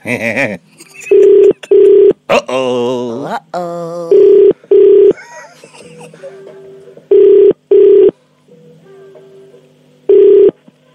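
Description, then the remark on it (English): A phone rings on an outgoing call, paired double bursts of ringback tone repeating at steady intervals, loud, with voices and chatter murmuring in the gaps. “It's ringing.”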